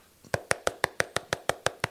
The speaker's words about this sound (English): Stop knocking on the door. It's open.